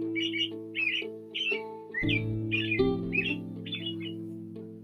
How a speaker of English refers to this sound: Take a moment out for the birds.